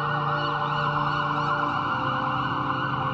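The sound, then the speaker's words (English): A loud ambulance siren wails steadily throughout, its bright layered tones holding at an even volume over a low vehicle rumble, with no voices. “The ambulance ride seemed buoyant to the point of pleasant before I passed out from losing too much blood.”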